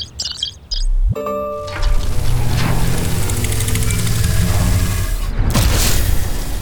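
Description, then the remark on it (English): A heavy mechanical clunk as cannon 3 locks and loads, followed by a loud, sustained humming rumble as it powers up, with a brief whoosh near the end. No voices. “Cannon 3 is locked and loaded.”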